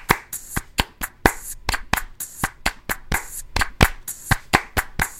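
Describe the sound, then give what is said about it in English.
A programmed clap sample repeats in a steady, quick rhythm, each crisp, bright hit sharp and identical, with no voices, like a sequenced pattern in a music track, the clap copied, pasted and placed on a separate channel while a beat is being built. “Now we're gonna clap though.”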